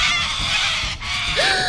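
In a dark forest, a loud, raspy owl screech tears out, a harsh hissing shriek that holds for nearly two seconds with a brief dip before a wavering tonal edge at the end.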